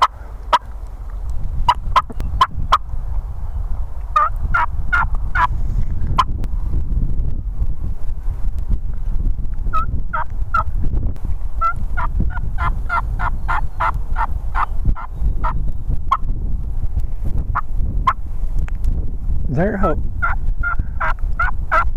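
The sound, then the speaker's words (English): Several turkeys gobble repeatedly in rapid rattling bursts at daylight as they fight their way up into a churchyard, over a steady low rumble of wind noise. No one speaks. “Why did we not hear all these turkeys here, guys?”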